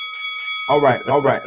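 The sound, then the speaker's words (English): A bell rings once with a bright, sustained metallic tone that lingers and slowly fades as a person starts talking over it. “Where's my bell? Hold on. I'm trying to behave tonight. Hold on. I got to give you a full bell.”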